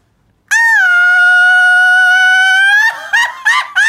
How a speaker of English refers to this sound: What's a, grito? It's just grito. It's the fun yell that he does.